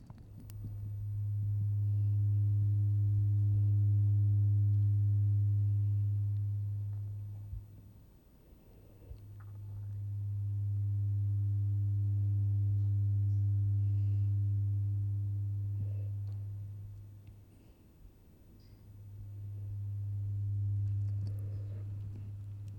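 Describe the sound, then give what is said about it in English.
A low, steady humming vibration from a wearable nerve-stimulation device pressed against the chest and controlled by an app, rising and fading in three long bursts of several seconds each with brief pauses between, with no voices. “There's another sound too, something pressed close to my chest, vibrating quietly, humming and purring like a busy cat.”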